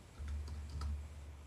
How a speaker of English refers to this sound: Typing it in.